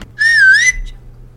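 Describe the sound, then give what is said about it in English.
A single short whistle from a girl signalling secretly, clear and fairly loud, its pitch dipping slightly and rising again before cutting off, heard alone over a faint low hum. “So she used their secret whistle to let them know she was by the back door.”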